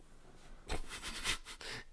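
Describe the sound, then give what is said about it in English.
Loud nasal sniffing: a few sharp, hissy inhales bunched together, starting after a short quiet pause and running almost to the end, with no talking. “Sniffing the Adderall.”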